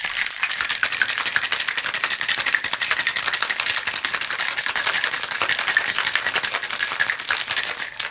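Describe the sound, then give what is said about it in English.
A cocktail shaker holding a yellow Red Lion cocktail is rattled hard and fast, ice clattering in a steady, rapid rhythm for several seconds with a bright, crisp rattle and no voices. “Give it a shake.”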